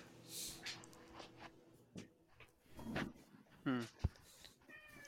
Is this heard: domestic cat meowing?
yes